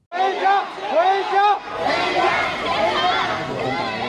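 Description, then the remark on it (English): A large crowd of Nanjing Tech University students protesting China's strict COVID-19 policy on campus in Nanjing, China, on a Monday night chants slogans in unison, demanding to go home, with rhythmic shouted phrases rising and falling, then dissolving into a loud, continuous roar of many people yelling together. “They were chanting slogans and demanding to be allowed to go home.”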